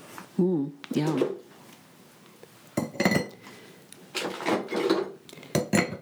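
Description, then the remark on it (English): Big ice cubes knock and clink against glass in several short, bright bursts, some sharp rattles mixed with scraping clatter, while people talk over and between the clinks. “Hear that? The big ice cubes. The honkin' gazunka ice cubes.”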